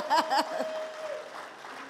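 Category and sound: crowd, audience applause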